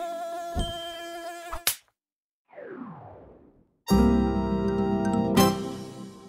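A fly buzzes with a steady, rasping drone, stops abruptly, and after a short silence and a brief falling whoosh, the buzzing returns louder and continues to the end.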